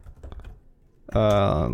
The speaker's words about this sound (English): Can you hear me typing?